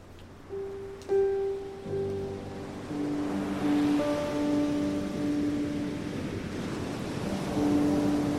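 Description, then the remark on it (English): Ocean surf roars in broad, rushing swells that build and recede as it crashes against cliffs, with steady sustained low tones humming underneath; no one speaks. “The surf roars. Steep cliffs rise from the edge of the Sea King's blue realm.”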